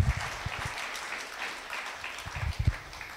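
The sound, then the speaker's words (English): A crowd claps steadily for a few seconds in praise of God, a dense, even patter of many hands with a few sharper individual claps standing out, and no voices over it. “Give God a big round of applause, ladies and gentlemen.”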